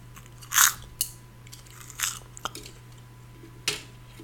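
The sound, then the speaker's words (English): Crisp crunching as a crunchy cheese ball is bitten and chewed, a loud first bite followed by several sharper crunches at irregular intervals, with no talking. “ASMR crunchy.”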